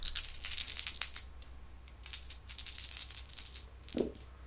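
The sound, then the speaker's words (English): Four six-sided Farkle dice rattle in a quick flurry of bright, clicky clatters, pause briefly, then clatter again before a soft thud as they land. Fairly quiet, with no talking. “Use my Farkle dice.”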